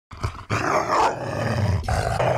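A dog growls and snarls aggressively and loudly, in a sustained rumbling burst with a few sharper snaps, lasting a couple of seconds with no talking.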